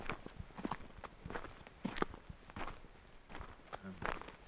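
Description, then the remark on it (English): Footsteps crunch over frozen ground in a steady walking rhythm as someone walks toward a river, each step a sharp, brittle crackle, with a faint voice murmuring in the background. “You can tell how frozen everything is by these crunching sounds.”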